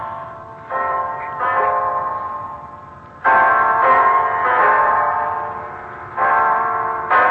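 A clock strikes ten o'clock with a series of deep, resonant bell strokes. Each rich tone rings on and overlaps the next at an uneven, unhurried pace, with no voices.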